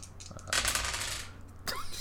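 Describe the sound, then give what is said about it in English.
Dice clatter and tumble across a hard surface in a burst of rapid clicks, with a second short rattle near the end; fairly loud, no voices. “More and more dice.”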